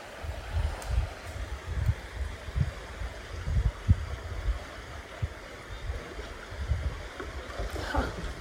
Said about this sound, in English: A boat just went past. Do you hear it? Knocking against the rocks. This river has deep spots and shallow spots.